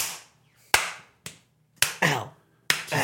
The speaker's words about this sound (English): Clap clap clap clap clap clap clap clap clap clap clap clap.